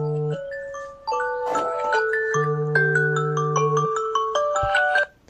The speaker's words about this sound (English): Sorry about that. It was an alarm on my cell phone. Forgot to silence it.